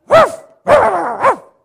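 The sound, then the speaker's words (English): A human voice imitates a dog barking: one loud bark, a brief pause, then two more barks in quick succession, with no other talking. “I said, we're going to pray, and don't you be barking and disturbing us unless you bark in the Holy Ghost.”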